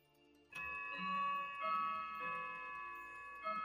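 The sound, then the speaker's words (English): A clock ticks, its steady beats overlaid by bright, sustained ringing tones that begin abruptly and hold at a moderate level, with a few fresh strikes along the way. No one speaks. “Uh-oh. Time's up. The paladin's ready. The all father's clock is.”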